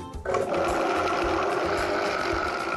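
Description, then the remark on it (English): A blender whirs into motion and runs steadily, its loud motor whine holding a constant pitch with a churning, grinding texture as strawberries are pureed for a layer of a three-layered smoothie. No one speaks. “You're just gonna add the strawberries right to your blender.”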